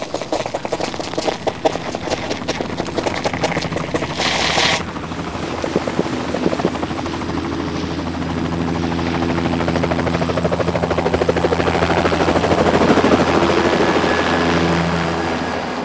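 Loud helicopter rotors thump in a rapid steady rhythm, then blend into a continuous roaring engine drone that swells slightly toward the end, with no voices over it.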